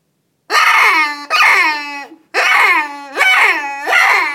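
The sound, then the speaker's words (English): A predator call mimicking a dying rabbit, an orange, see-through call meant to lure predators such as coyotes: four loud, raspy, high-pitched wails in quick succession, each sliding downward in pitch, with no talking. “that call sounds like a dead rabbit or a dying rabbit”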